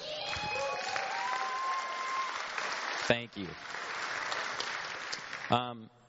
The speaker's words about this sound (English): They just need an applause right now.